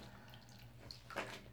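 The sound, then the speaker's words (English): Water runs steadily from a faucet into a bathtub as a hot bath is drawn, a continuous splashing hiss with a brief louder gush near the end, no voices present. “Don't get out any markers or pens, just let the water flow into the tub.”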